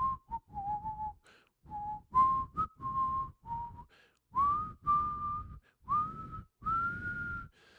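Someone whistles a simple tune up close, a string of clear, separate notes that step and slide upward in pitch, with short breaths between phrases and no talking.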